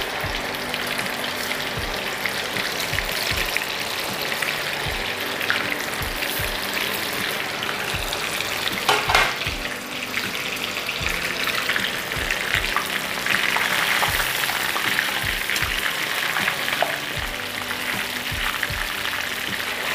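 Cobbler (catfish) fillet frying in a hot pan for under a minute, a steady crackling sizzle with scattered pops and spits throughout, no one speaking.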